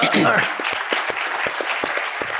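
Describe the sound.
An audience applauds steadily, a dense wash of clapping with sharper individual claps popping through; a brief voice rises at the very start before the applause carries on alone at an even level.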